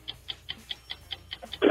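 A 45-second game show countdown clock ticks in a quick, even rhythm, about eight crisp ticks, before a sudden louder burst of sound cuts in at the very end.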